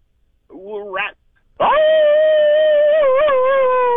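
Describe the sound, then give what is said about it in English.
A person imitates a wolf howl, the first of 2022 on a morning show: a short rising yelp, a brief pause, then a long, loud, steady howl held on one pitch with a slight waver near the end. “Okay, man, to seal the deal around here, we need a wolf howl.”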